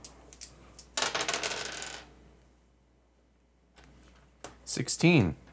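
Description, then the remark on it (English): Dice rattle briefly in a cup or hand, then after a pause clatter and tumble onto a hard table with a few sharp clicks, spinning to a stop, as a player makes a dexterity roll in a tabletop game. “Oh, to exit the barn, I need another dex roll to scramble over all the stuff again.”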